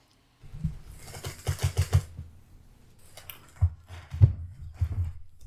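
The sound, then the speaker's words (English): A wicker chair in an Airbnb creaks and crackles as someone moves in it, in short, irregular bursts, with sharp snapping ticks clustered early on and then scattered pops, fairly loud with no talking. “I'm in a wicker chair, and just every time I move at all, it crinkles and cracks, and I'm all of a sudden my back gets sore, and I'm like, I gotta move.”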